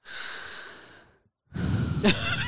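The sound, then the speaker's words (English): A voice imitates the heavy sleeping breath of a man who fell asleep in a car: a long, raspy exhale that fades out, a brief silence, then a louder noisy breath with a short snorting catch in the throat. “Heavy breathing.”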